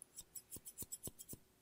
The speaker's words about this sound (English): Hello, how are you? I have a couple of different scissors with me today.